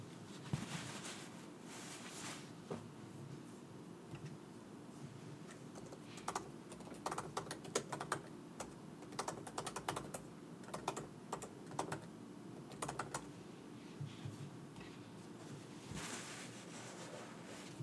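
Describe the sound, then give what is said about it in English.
Quick bursts of keyboard typing as a grocery list is typed up, a rapid run of clicks and taps in uneven clusters over a steady low wash of background noise. No one speaks. “I just remembered a couple things I need to get from the grocery store, so I was just typing those up real quick.”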